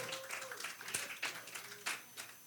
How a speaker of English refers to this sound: Give God a thunderous ovation of praise. Come on, clap your hands for the King of Glory.